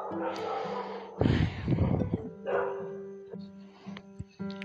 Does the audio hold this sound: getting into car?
no